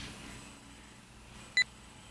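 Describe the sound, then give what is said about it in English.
A single short, high electronic beep from a braille device sounds once during a software installation, crisp and fairly loud, after a stretch of near silence with faint background hiss. No one speaks. “The beeps let you know that the installation is still continuing without a problem.”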